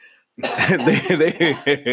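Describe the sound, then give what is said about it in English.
Coughing from two people at once, fairly loud, in a run of overlapping rough, voiced bursts that end in two short, sharp coughs. “We got synchronized coughing in this month.”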